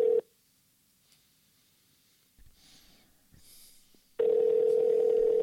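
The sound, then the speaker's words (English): A loud, steady telephone tone sounds briefly as a phone call is dialed, then gives way to near silence with faint breathing and snorting before the ringing tone returns, sustained, with no one talking. “I'm about to call somebody else, but I'm talking about power.”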